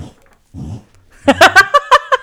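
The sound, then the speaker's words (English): A dog gags and retches on a bone, a quick run of about six harsh, throaty heaves after a second of soft, low shuffling and quiet grunts. “Fucking dogs having a hairball attack.”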